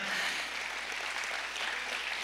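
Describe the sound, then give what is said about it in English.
A church audience applauds during a sermon, a steady, dense wash of many hands clapping at once, fairly soft and even throughout, with no voices standing out. “My God, y'all ought to clap for that right there.”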